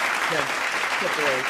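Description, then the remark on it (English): A steady, dense wash of clapping from many hands, holding at an even level throughout, with a few raised voices and cheers mixed into the noise. “Let's give a cheer real quick, man. Let's give a nice clap.”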